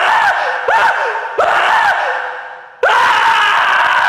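A man screams in loud, strained bursts: two short cries, then a long drawn-out one that fades, followed by another sustained, piercing yell. No talking.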